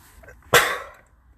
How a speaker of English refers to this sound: Should have let out a dad sneeze. Bless me.